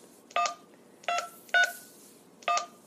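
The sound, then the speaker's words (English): Four short electronic beeps from a phone keypad as a number is dialed to call Mr. Eric from What If World, spaced unevenly about half a second to a second apart, each a crisp dual-tone chirp at moderate volume with no talking. “That phone number is supposed to be 334. Something.”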